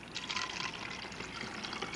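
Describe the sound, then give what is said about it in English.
Water pours in a steady, unbroken stream for a couple of seconds, a bright splashing hiss with no voices. “Water levels were kept the same in both.”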